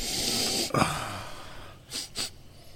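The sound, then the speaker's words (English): Breathy sniffing right up against the microphone as a person noses a glass of whiskey: a long drawn inhale, a sharp snort-like catch, then two quick short sniffs near the end, with no one talking. “You gotta get close to the mic when you sniff it.”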